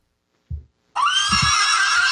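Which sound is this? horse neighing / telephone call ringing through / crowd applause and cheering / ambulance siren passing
horse neighing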